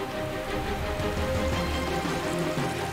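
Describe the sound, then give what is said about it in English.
Steady, dense hiss of a heavy rain downpour over the Königssee, pouring down continuously, loud, with a faint tonal hum running underneath and no voices. “A heavy downpour quickly raises the water levels in the Königssee.”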